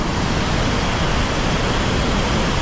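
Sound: rushing river water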